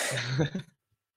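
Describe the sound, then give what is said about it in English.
A single sneeze: a short, forceful, breathy burst with a voiced edge, lasting well under a second before cutting off into silence. “And then, sorry, I might sneeze.”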